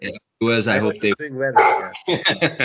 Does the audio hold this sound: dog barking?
yes